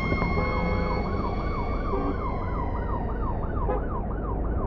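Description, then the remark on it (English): Police and ambulance sirens wail loudly, coming up fast from behind on a highway, one rising and falling in a steady repeating sweep over a constant rumble of road traffic, with a second horn-like tone layered in, continuous. “I hear the sound of police sirens coming up fast from behind, followed by an ambulance.”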